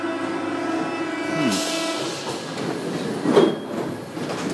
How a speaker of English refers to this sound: And here's the train. Wow, okay. The trains are more rectangular in profile than the UK, where they have the very curved top. So that's an interesting difference.